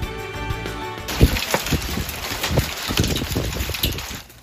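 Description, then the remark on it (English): Hail pounds down on homes in Dripping Springs during an evening storm in a dense, steady roar, with sharp irregular thuds and clatters breaking through the hiss. A brief hum comes first, then the storm starts abruptly and keeps going. “Yeah, hail as we continue to look at the videos and pictures from the storm coverage we had for you yesterday and overnight.”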